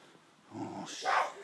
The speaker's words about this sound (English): Keep quiet, you little yapper. I couldn't be living with a dog like that.